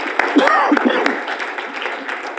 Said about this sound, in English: Come on, give him one more hand clap of praise. Amen.